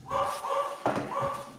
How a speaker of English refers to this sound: Sorry about that. My dog was just going nuts at the delivery driver at the door.